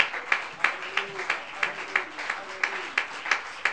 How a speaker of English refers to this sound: Thank you, Jesus. And why don't we give the Lord a hand clap of praise and thanksgiving in advance right now.